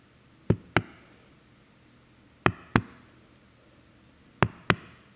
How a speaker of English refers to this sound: the ever nearer ticking of the telltale heart. Listen, can you hear it?